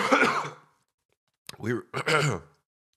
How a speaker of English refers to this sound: Excuse me. I'm so sorry for coughing in the mic. See, I was doing this when I started this podcast a month or two ago. Coughing in the mic. And now here I am again, sick, coughing in the mic.